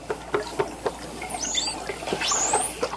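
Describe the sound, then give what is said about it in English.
A dolphin thunk call: a quick run of short, hollow knocks like fingers drumming on wood, followed by high, rising whistles sweeping over a hissing watery background. “One of these is the thunk call, a pattern of short knocks that sounds like a person drumming on a piece of wood.”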